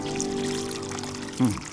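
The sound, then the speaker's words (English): Water poured from four large jars over meat and wood on an altar falls in a steady, continuous stream with a hollow, ringing tone, then surges briefly near the end. No one speaks. “Now, fill 4 large jars with water and pour it over the meat and the wood.”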